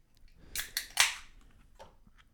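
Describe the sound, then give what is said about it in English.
A can of 6.5% ABV, 55 IBU beer cracks open: a couple of sharp metallic clicks, then a louder pop with a brief fizzing hiss, followed by a faint click or two in otherwise quiet surroundings. “Come on, crack it. Go on now, crack it.”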